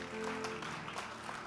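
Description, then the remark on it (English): A crowd claps together after a prayer to celebrate God, a dense, steady burst of applause lasting the whole moment, with a faint sustained musical tone underneath at the start. “Celebrate God with a clap.”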